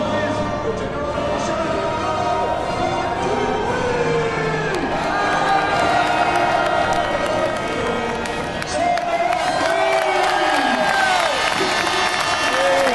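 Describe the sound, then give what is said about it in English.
A large crowd cheers and shouts continuously as it invades the pit lane at the end of a race, with whoops, scattered clapping and overlapping voices forming a loud, steady roar throughout. “Right, now the crowd invasion of the pit lane begins.”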